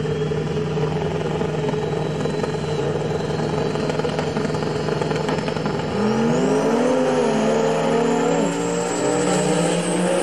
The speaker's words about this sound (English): And look at that. The Dodge truck wins. Okay? So the Dodge truck beat up a car that's probably a 5 second eighth mile car.